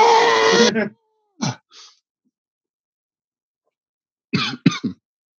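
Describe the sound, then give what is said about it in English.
A voice imitates guttural screaming: a loud, strained, raspy yell lasting under a second, then two short rough bursts, a pause, and a final cluster of choppy, growling vocal blasts. “Guttural screaming.”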